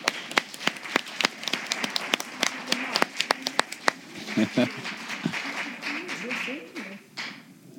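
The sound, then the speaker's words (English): A burst of sharp, irregular clapping from an audience for about four seconds, thinning out as murmuring voices and cheers take over toward the end. The audience at a Unity of Fairfax service is applauding the ladies. “So let's give the ladies a round of applause.”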